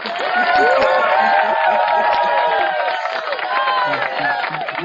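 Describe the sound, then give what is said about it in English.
A canned applause effect: a large crowd clapping and cheering in a dense, steady roar of many overlapping voices, loud throughout and without any single speaker. “And I hit the high budget applause for you.”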